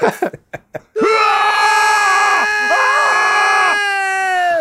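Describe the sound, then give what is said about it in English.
The video game character Eggman lets out a loud, drawn-out shriek of pain as Charmy stabs him, held for several seconds with a wavering pitch, preceded by a few short clipped vocal bursts. “Yes, the following Eggman just shrieking in pain from Charmy stabbing him.”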